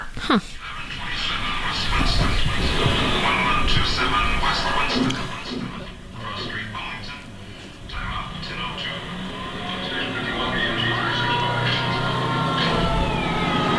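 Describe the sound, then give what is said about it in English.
A fire engine rumbles with a steady, loud engine drone and high tonal wails layered over it, while indistinct voices murmur in the background throughout. “So that engine right there, that is right around the same exact year range as the parade engine.”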